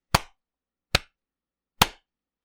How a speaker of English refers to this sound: Okay. So I'm going to clap again.